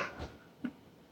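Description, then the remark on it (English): Two quick, soft sniffs of a freshly opened Red Bull can, short breathy puffs of air drawn in through the nose, separated by a brief quiet gap, with no talking. “I'm going to give it a sniff before I pour it out for everyone.”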